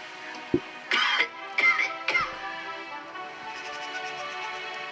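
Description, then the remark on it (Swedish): A short sharp hack followed by a quick run of three harsh coughs within about two seconds from a person with chills and a contagious virus, then only faint background noise. “Hosta i armväcket”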